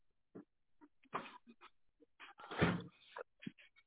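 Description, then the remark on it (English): The door of a room is pushed shut with a solid thump, surrounded by a few short muffled knocks and shuffling sounds. “Let's close this door.”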